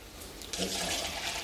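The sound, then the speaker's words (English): Water starts pouring abruptly after a brief quiet moment, a steady splashing stream from a jug that continues at a fairly loud, even level until the end. “Now, if you want to grab the jug. Yep. So, what happens? God pours his love into our heart.”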